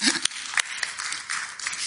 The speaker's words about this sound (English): So there's not been much for these two to do, and they can go and sit down, but give them a round of applause anyway.